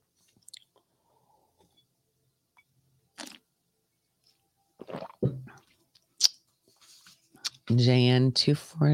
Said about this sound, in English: I'm gonna sip the coffee first, though.